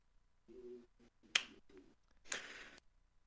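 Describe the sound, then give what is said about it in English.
A single sharp hand clap cracks out once, brief and loud, set between soft low humming vocal sounds, with a hissy, breathy burst following a moment later. “Did you just fucking clap?”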